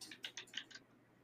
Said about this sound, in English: Let me look here. Oh, wait. I'm over here typing on the wrong computer.